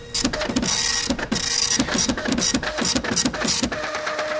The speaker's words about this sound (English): Okay, let me pull it off the MTS printer here. It's printing out.